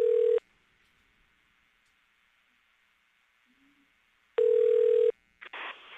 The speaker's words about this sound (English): Nothing better than dial tone.